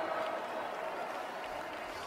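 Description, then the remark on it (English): A crowd at the 2024 AT&T Slam Dunk contest applauds the champion with steady, moderate clapping that holds at an even level for about two seconds, a lukewarm, unenthusiastic ovation with a faint murmur of voices mixed in. “Thank you for that tepid applause.”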